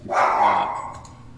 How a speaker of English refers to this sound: I think my dog's going crazy, so I'm going to mute myself.